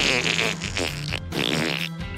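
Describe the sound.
A loud fart noise: a raspy, buzzing blast that breaks off briefly in the middle and then sputters on again, filling about two seconds with no talking.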